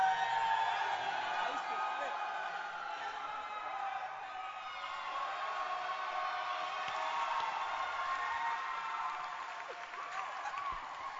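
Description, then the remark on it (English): A church crowd claps steadily for several seconds for a senior dancer, with scattered cheers and whoops rising over the dense applause, which stays fairly even in loudness throughout. “Let's clap your hands for this senior dancing star.”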